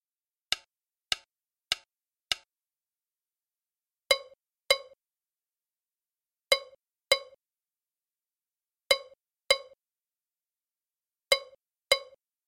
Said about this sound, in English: The piece begins with a Gankogui timeline with lots of space. The bell answers in the space of the Gankogui part.